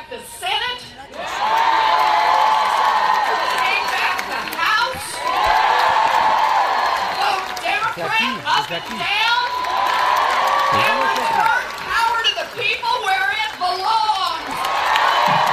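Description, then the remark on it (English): A large, supportive crowd of protesters cheers and shouts continuously for Elizabeth Warren, who came out from the Senate to meet them. Whoops and swelling roars rise and fall in loud waves throughout, joined by scattered clapping. “Obviously, she's got a supportive crowd.”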